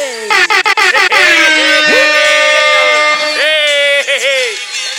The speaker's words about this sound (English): Oh, yeah, we gotta get some air horns for this. Give me some air horns, kid.